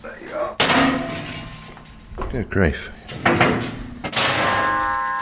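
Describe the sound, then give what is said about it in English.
A metal panel by an old drying rack is lifted to reveal the old hot water pipes beneath, with a loud clank and scraping, its ringing metallic tones lingering, followed by another clatter as it shifts, while a person speaks briefly over the noise. “And if I lift this metal panel up, you will see the old hot water pipes.”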